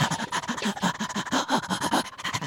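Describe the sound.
Bill Irwin, playing the dog Stanton, imitates an agitated dog panting hard and fast, a rapid, breathy, continuous rhythm of short huffs, fairly loud, with no words spoken.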